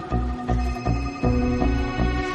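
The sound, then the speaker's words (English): A phone rings in the distance with a bright, tonal ringtone, its notes repeating in a quick, steady pattern for a couple of seconds, with no talking over it. “A phone ringing in the distance.”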